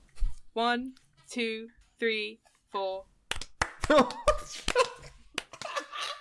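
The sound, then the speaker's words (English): Four sung, rising voice tones, then a single sharp hand clap among several crisp taps, with people talking and laughing over them. “I didn't no, that clap. Was fine.”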